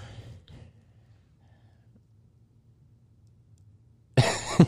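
After a long stretch of near silence with a low background hum and a faint rustle early on, a sudden loud burst of coughing comes right at the end.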